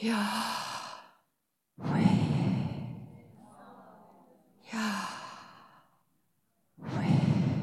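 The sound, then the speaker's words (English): A person takes slow, deep breaths in and out, with loud airy inhales and sighing exhales repeating in a steady rhythm, and short silences between them. “You're breathing in God and you're breathing out God.”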